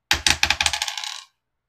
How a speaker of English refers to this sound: roll me a D100. Oh, God. I forgot how to do this. Two tens. Two dice. First one is a tens place. Second one is a ones place.